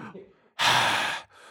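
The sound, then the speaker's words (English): A voice imitates the heavy breathing from the trailer for the film The Revenant, with one loud, breathy exhale lasting about half a second, framed by softer breath sounds before and after. “Homeboy was like breathing all hard shit with like the trailer music.”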